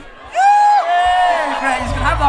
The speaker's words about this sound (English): So, as I say, you can feel the hum of excitement. You can feel it. Palpable. We've just introduced ourselves to the crowd. The crowd is going mental. There's been a few roars.